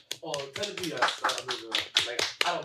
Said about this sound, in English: Clap your hands if you agree